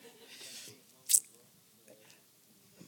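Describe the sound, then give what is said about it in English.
Quiet mouth sounds as someone takes a drink of water, with one short, sharp sip or slurp in the middle and soft swallowing and lip noises around it. “Let me get some water.”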